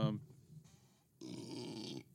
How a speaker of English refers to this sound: Oh, that's a cheap champagne burp right there, buddy.